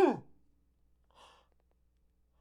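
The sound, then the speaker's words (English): A single sharp, loud sneeze beside a microphone bursts out at the start and quickly trails off, followed a moment later by a soft, breathy exhale. “You got sneeze on your microphone.”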